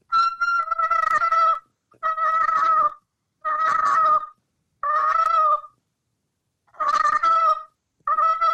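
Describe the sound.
A turkey call worked to make a purr: six short, broken-up bursts of raspy, rolling, mid-pitched tone separated by brief silences, fairly loud, with no talking.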